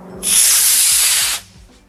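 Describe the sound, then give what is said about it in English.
A model rocket whooshes off in a loud, steady rush of bright hissing noise that starts abruptly, holds for about a second, then cuts off sharply, leaving faint low rumbles behind. “And you can hear them, if it's a still day, you can hear them whoosh off.”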